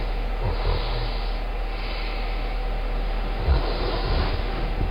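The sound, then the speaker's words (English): Soft nasal snoring rumbles faintly beneath a steady, loud background hiss, with a couple of breathy snorts rising briefly, one near the start and another past the middle. “That's a nose. That's a snore.”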